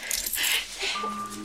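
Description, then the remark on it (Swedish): A short bright jangle of keys being handled, metallic clinks clustered over about a second, fairly clear, fading into a faint lingering ring. “Nej, men här är dina nycklar.”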